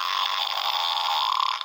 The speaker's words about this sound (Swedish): Ursäkta mig. Nej, hon pruttade. Men oj, ursäkta mig.